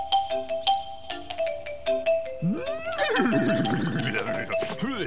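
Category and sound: animal, horse neighing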